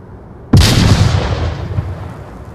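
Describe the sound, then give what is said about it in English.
A single frag grenade explosion goes off with a sudden sharp crack, then a heavy rumbling roar that slowly fades over a couple of seconds. No voices. “Okay, grab some frags, let's make some noise.”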